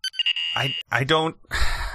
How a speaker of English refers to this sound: Oh God, those beeps mean shit.